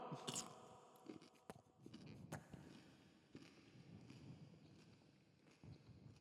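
Close, wet chewing of a mouthful of food, with irregular smacks and crunchy clicks repeating for several seconds, loud and right up against the microphone, with no one talking.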